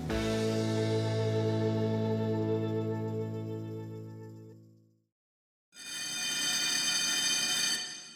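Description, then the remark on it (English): A bell rings out with a rich, resonant tone that slowly fades over several seconds, then after a brief silence a second, brighter ring sounds on its own. “Oh, that bell means that that's all we have time for today.”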